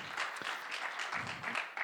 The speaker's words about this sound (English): If we're going to have three of us clap, we all have to clap.